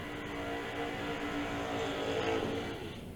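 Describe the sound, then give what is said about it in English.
A drag racing door car's engine roars steadily and loudly for a few seconds, a dense mechanical drone with no voices over it. “This door car's fast, too.”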